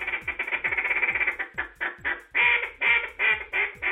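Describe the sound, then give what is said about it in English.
A rapid series of loud, raspy quacking notes blown on a duck call by the reigning world champion duck caller, a judge at a duck calling competition, starting as a fast rolling chatter and slowing into longer, emphatic quacks near the end. “the reigning world champion duck caller and a judge at this year's competition.”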